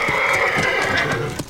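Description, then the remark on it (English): A horse whinnies in a drawn-out, wavering cry while its hooves clop sharply and unevenly on a hard floor as it tries to get inside a pub, with no one speaking. “I hate to interrupt, but the horse is trying to get inside the pub now.”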